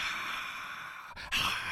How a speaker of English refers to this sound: I should probably put in some like better applause or some kind of better sound effect instead of me coughing.